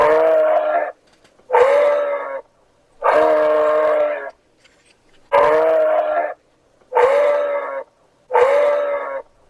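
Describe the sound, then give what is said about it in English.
A moose calls six times in a row, each call a loud, drawn-out, nasal moan lasting about a second, separated by short pauses. Clear, with no talking. “It was a moose in the hoose.”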